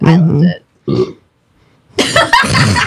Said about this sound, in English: Sorry. I thought you were going to make like a side comment. Side burp.